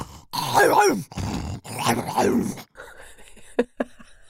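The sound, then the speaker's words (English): A human voice imitates snarling, fighting Rottweilers with two long, rough, throaty growls that rise and fall, followed by a quieter stretch with a couple of short, sharp clicks. “Authentic baby crying, and dogs, dog barking in the distance, growling dogs, fighting Rottweilers, that kind of a thing.”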